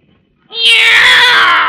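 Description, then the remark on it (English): A single loud, drawn-out meow from a cat just taken out of a big gift box rings out after a moment of silence, sustained and slightly wailing until the end. “It's a cat, Miss Brooks.”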